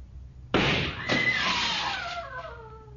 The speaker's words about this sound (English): The boy who fired the shot shouted with joy. Then they linked arms and walked off.